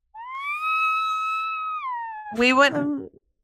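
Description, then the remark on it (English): A voice imitates a whale call: a long, high, steady tone that slowly sags in pitch for about two seconds, then breaks into a short, louder, warbling groan before stopping. “I don't know why I made a whale sound there, but apparently that was necessary.”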